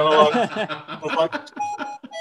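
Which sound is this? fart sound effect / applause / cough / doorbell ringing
doorbell ringing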